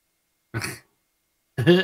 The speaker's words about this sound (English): Excuse me while I mute this cough.